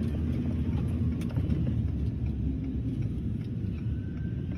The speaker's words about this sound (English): There's the bus.